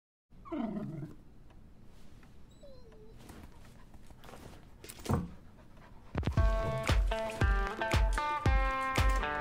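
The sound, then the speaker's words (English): A puppet dog named Tucker in the AA advert "Love That Feeling" pants in quick breaths at the start, followed by rustling background noise, before loud, bright music with a steady beat takes over for the final few seconds. “It features a puppet dog, which is called Tucker, and he's looking forward to getting back on the road.”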